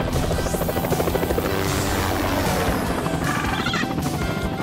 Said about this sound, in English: What do you say we see what this bird can do? Woo! We are not getting you a helicopter.